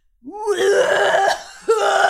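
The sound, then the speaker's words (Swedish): A voice imitates a man's harsh, rasping coughing fit in the toilet in the morning: a long, strained hacking burst followed by a second shorter one, loud and throaty with no other speech. “Och alltså går in på toaletten och hostar ut sina lungor.”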